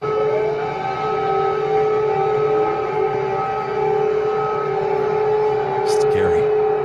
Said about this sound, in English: What you'll see is them airing footage of an air raid siren going off in the Ukraine.